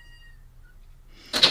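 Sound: door being closed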